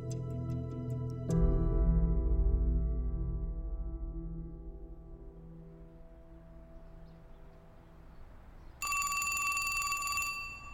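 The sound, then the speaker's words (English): A telephone rings loudly near the end, its bright, sustained ringing cutting in after a long, low droning tone that swells and slowly fades. No one speaks. “The phone rings, you pick it up, ask who's calling, then you take a message or you hand it to the person they want to talk to.”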